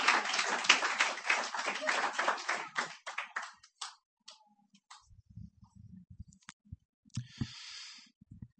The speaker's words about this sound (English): Clap the poet to the stage, ladies and gentlemen.